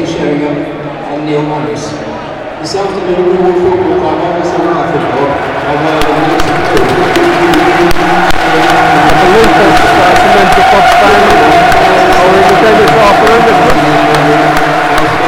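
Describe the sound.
A large stadium crowd applauds steadily in a minute's applause for the late Bob Pearson while players line up in the centre circle, a dense, sustained wash of clapping that swells after the first few seconds and holds at a loud, even level, with murmuring voices mixed in.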